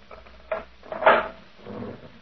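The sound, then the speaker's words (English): A jail cell door is opened by a sergeant: a short metallic clunk, then a louder grinding scrape and a softer trailing rattle as it swings, with no voices over it. “You may open the cell door for me, Sergeant.”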